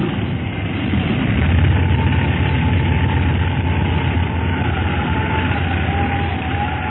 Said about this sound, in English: I never thought you'd be able to make a dead stick landing in this windstorm. I didn't either for a little while, but I think we've won. Hold tight now. I'm going to set her down.